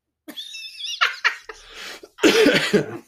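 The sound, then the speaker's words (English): Several loud coughs into a microphone: a wheezy, breathy start, then two short bursts and a final harsh, rough hacking cough, with no talking. “Why don't you cough times in the microphone?”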